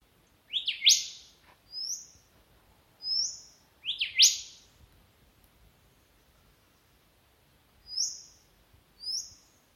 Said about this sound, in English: This recording was taken on my phone in Barmah National Park on Yorta Yorta Country in New South Wales. Hear how this golden whistler has a very cute little whistle that ends with a drawn-out seep sound.